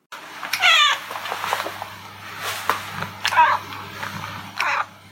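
A cat named Lynn50 meows repeatedly, three or four drawn-out, wavering cries spaced a second or so apart, fairly loud, with a steady low hum in the background.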